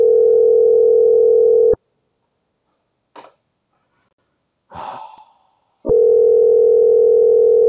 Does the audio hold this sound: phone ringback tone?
yes